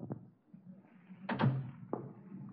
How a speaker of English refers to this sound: Look, close the door and sit down.